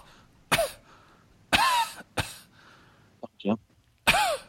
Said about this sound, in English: I've got a cough.